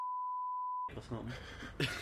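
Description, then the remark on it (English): A single steady electronic checkout scanner beep as items are scanned at a market checkout holds for nearly a second, then cuts off as voices and busy background sounds take over. “so I'm sitting there, I'm scanning items. Beep.”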